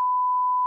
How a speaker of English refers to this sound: Would have been 5 seconds and a loud beeping noise for you, but for us, it's been about a day?